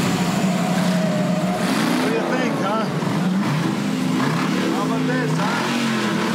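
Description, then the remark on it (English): A car engine revs hard and loud, its roar climbing and dropping in repeated surges that run continuously for several seconds. “Can a battery-powered power car do this? I think this will piss off my neighbors.”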